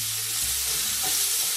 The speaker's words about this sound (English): Meanwhile, these onions have been frying for a bit.